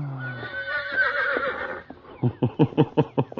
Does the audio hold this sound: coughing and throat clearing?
no